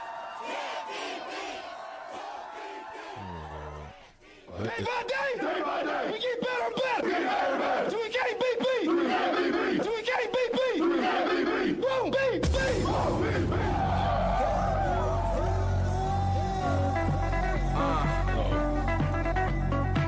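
A loud Nebraska Huskers game-day pump-up anthem with shouted, chant-like vocals over driving music; after a brief dip it surges back, and heavy bass fills the second half.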